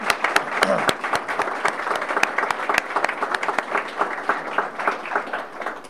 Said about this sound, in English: I think we should give him a round of applause, even in his absence.